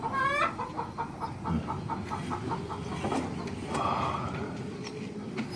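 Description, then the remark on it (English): A chicken clucks in a quick series of short, rhythmic clucks, then lets out a longer drawn-out squawk, all over a steady low background rumble, in a scene from the film Extraction. “And that chicken was not here.”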